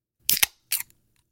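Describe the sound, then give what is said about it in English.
A can of strawberry lemon sour ale cracks open: a sharp metallic snap and quick fizzing burst, then after a short pause a second brief hiss. No voices. “And so we got a strawberry lemon sour ale, and I'm just going to rip off another ASMR here.”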